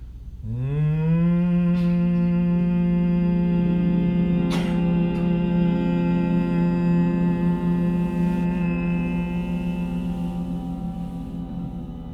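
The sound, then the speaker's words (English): A long, deep closed-lip hum from a single voice, made while exhaling with the lips together, rising briefly at the start and then holding one steady, buzzing low pitch for about eleven seconds before tapering softly. “And every time you exhale, lips remain together. You make the humming sound louder, deeper, and longer.”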